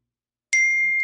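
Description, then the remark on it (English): A single bright electronic ding from a phone message alert, as friends message each other, rings out clearly after a moment of silence, its steady tone sustaining briefly before cutting off. “I gotta get rid of the phone. My friends are on a rampage to talk to each other for some bizarre reason.”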